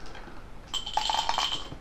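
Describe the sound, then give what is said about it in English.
Pebbles clink and rattle against each other in a quick, irregular burst of bright, hard little clicks lasting about a second, following a short stretch of near silence. No one speaks. “Oh, it's the pebbles.”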